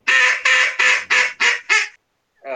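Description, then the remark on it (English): A loud series of six raspy duck quacks made with a duck call, in a steady, quick rhythm, descending slightly, followed by a brief pause and the start of another quack. “Sometimes it's a series of quacks, sometimes it's just quacks, just spaced out.”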